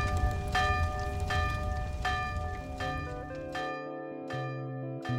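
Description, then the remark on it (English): A bell rings in the distance, struck repeatedly in a steady rhythm, its tones lingering and overlapping between strikes over a low background rumble; no one speaks. “And a bell goes off in the distance.”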